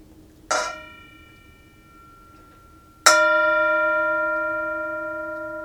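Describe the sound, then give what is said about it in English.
A bell is struck twice as an invitation to return to the breath and the present moment, each strike a bright metallic clang with a long shimmering ring; the first fades, and the second, louder one sustains and slowly decays. No voices. “Enjoy the sound of the bell, and we invite you into presence for this program as well.”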